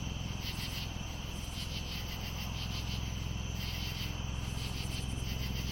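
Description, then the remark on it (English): Crickets and other nighttime insects chirp steadily at twilight as the sun sets, in a dense, high-pitched chorus, with pulsing trills layered over a constant low hum and no voices. “Let's listen to some nighttime insects.”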